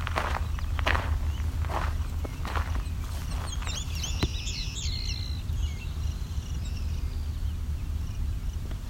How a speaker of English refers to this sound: Some Savannah sparrows over here. Can I point this at them?